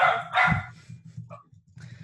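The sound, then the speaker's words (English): A dog barks at a UPS delivery truck: two loud, sharp barks in quick succession, followed by quieter low grumbling and a few faint yips. “For anyone listening, my dogs go off at UPS and her dogs go off at UPS as well.”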